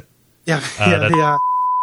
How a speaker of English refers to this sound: So we'll put in a beep.